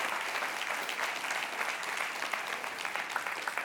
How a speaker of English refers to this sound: Yeah, come up here real quick. Y'all clap it up.